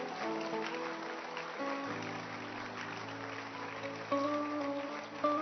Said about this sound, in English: Keep clapping your hands for them.